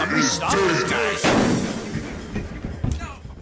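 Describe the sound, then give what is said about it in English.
A voice is heard briefly, then a single loud, sharp gunshot rings out as a man shoots himself in the head, followed by a rough decaying tail and a few faint thumps afterward. “He just shot himself in the fucking head.”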